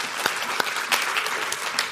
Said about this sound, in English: So we are, again, going to celebrate our anniversary here next week, so amen. Let's give another round of clap for that.